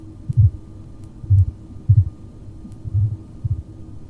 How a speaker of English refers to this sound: The heartbeat is soft and the breath is shallow.